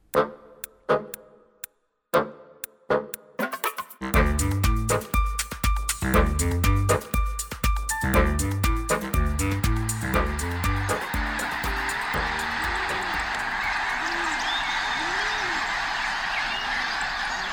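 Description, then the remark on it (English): A flock of migrating birds calls in a dense chorus of honking cries, starting with a few sparse calls and swelling into a loud, continuous overlapping clamor that holds steady to the end. “The sound of winged dinosaurs during migration.”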